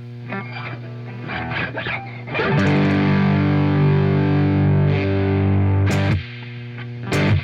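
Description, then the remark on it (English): Overdriven electric guitar through a heavily reverberant amp, its drive being turned up while the reverb control stays down: a few short picked notes, then a loud, gritty chord rings out for about four seconds before being choked off, followed by quick stabs. “So with the reverb still down, as I bring up the drive, the reverb comes in.”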